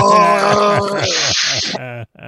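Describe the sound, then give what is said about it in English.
A person imitates a Wookiee growl, a loud, strained, warbling moan held for about two seconds, then breaking into shorter rough bursts. “Is that your Wookiee noise, or are you choking on yogurt?”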